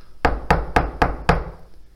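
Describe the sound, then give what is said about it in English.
Five firm knocks on a door in a quick, even rhythm, the last one landing a beat late, fairly loud with no voices. “Is someone at the door?”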